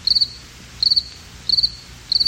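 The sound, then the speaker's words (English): A cricket chirps in four evenly spaced bursts, each a quick trill of four or five pulses, clear against a quiet background with no talking. “Crickets. That's what we should be playing right now.”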